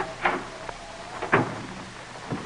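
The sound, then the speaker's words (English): Nathan Hale opens the front door of his father's house in Coventry, Connecticut, on a hushed night with snow falling: a few soft wooden clunks and rattles spaced out over a couple of seconds, fairly quiet against a still, faintly hissing background. No one speaks. “Snow was falling as he opened the front door.”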